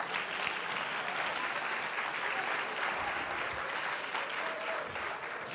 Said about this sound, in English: How many of you got some things that you wanted, but you hate you got it? You ought to put your hands together. Come on now.